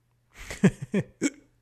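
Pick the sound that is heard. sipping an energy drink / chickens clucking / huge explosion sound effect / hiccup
hiccup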